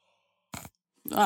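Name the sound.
person yawning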